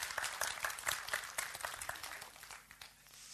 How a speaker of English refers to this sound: In fact, give him a round of applause. It was good.